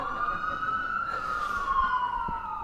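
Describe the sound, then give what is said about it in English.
An emergency vehicle siren wails steadily, its tone holding high with a slight dip and rise in pitch as it goes by, with no one talking. “In fact, did you know that God planned all your days, including sirens?”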